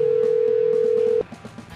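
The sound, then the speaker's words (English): A loud, steady telephone dial tone hums for about a second, then cuts off and gives way to a few quieter, short dialing beeps, as a 100.7 WCLX radio show calls someone at random for a senseless survey. “This is where we call people up at random.”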